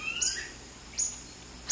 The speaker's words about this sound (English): Oh, that's some bird they've recorded. Certainly is peaceful.